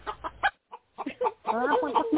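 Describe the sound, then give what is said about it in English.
A chicken, put on someone and trying to peck their eyes, clucks in a quick run of short, choppy bursts, pauses briefly, then breaks into a longer, louder warbling squawk. “Oh, my God, Lisa sticked her fucking North Sound chicken on me. Yeah, baby. It is trying to peck my eyes out.”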